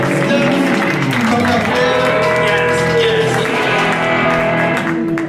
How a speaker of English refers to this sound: We gotta clap it up one more time for him.